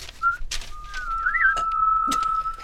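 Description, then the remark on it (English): A person whistles a thin, steady tone that wavers briefly in pitch, held for a couple of seconds, with a few soft clicks and rustles. “Want some whistles?”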